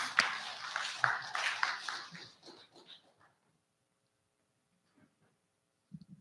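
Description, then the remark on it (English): A crowd breaks into applause, a dense patter of many hands that fades out after about three seconds, leaving near silence with a faint thump at the end. “So you can clap now.”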